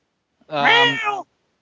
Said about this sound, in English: Is there like a cat hitting a fan in your room? I think it is. Or something? Oh my God, there is.